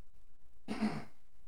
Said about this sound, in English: All right. I had to clear my throat. Sorry, guys. This podcasting thing ain't easy.